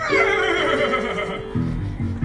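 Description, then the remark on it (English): Maximus, the horse of the royal guard, neighs loudly, a long, wavering whinny that fades out, followed by a few short, lower snorting bursts. “That's Maximus, the horse of the royal guard. And he's after me!”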